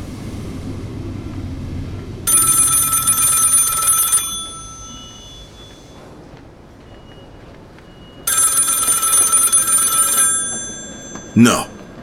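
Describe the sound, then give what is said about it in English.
A telephone bell, the fourth phone on the east side, rings twice in loud bursts about two seconds long, separated by a pause of several seconds, over a low rumbling background. “No. Damn it, you said third phone on the east side, not the fourth. That's not... That can't be my call.”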